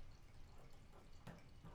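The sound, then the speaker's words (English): A dark Imperial Porter beer trickles from a bottle into a glass with a soft, steady splashing, broken by a brief sharper drip near the end; fairly quiet, with no one talking. “Let's crack this open, get some in our glasses.”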